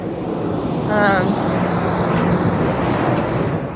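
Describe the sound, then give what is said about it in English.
A big truck rumbles past on the street, a steady, loud wash of low engine noise and road roar filling the whole stretch, with a brief tonal whine partway through. “Big truck going by.”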